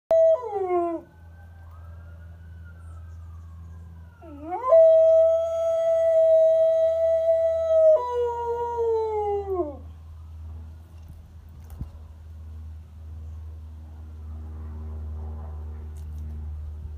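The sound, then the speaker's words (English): A dog howls in long, wavering tones, with two main drawn-out howls rising and sliding down, then trailing off into quiet background rumble. “If she's in the mood, she'll serenade the neighborhood when a siren goes by.”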